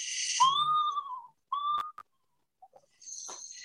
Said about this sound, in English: I looked up an audio file of that whinny and trill, like you mentioned, with the screech owls.